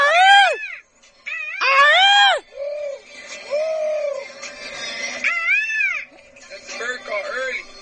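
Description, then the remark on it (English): A voice imitates a morning bird call with a series of loud, warbling, rising-and-falling wails, several bursts in a row with brief gaps, sounding somewhat cat-like and strained. “Let's do the bird call, the morning bird call.”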